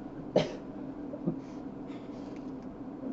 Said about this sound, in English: Nah, he's just sniffing. He's good.